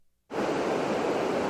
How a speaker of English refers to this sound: Is that a waterfall? In this video, he's like recording it in front of like a bridge. Perfect. So there is some water.